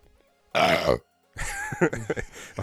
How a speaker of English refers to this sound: Your burp, once again, sounds just like Homer.